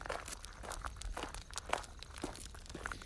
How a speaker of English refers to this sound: As you can tell from the crunching sound, I'm walking across the stones on our road that I put down, now probably a month ago.